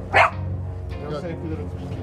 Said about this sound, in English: Puppies are excited.